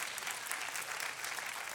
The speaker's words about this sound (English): And you can clap your hands.